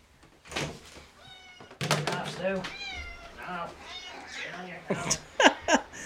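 An old male cat meows several times in quick succession, fairly loud, with wavering drawn-out cries, and a few dull thumps are scattered among the calls.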